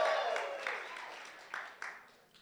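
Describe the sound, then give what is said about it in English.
An audience claps in praise to God together in a dense wash of applause with a few sharper claps standing out, mingled with a murmur of voices, gradually tapering off over a couple of seconds. “You can give him a hand clap.”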